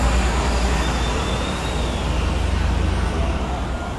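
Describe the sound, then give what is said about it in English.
A loud, steady roar of a New York subway train in a station, with deep rumbling and a broad hiss that holds level throughout, with no voices. “Here I go, into the subway.”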